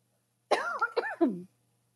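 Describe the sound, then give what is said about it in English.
A quick run of three or four throaty coughs, loud, packed into about a second with silence on either side and no talking. “hang on, I'm going to cough or sneeze or something.”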